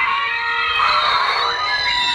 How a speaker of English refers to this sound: Okay, that's his roar.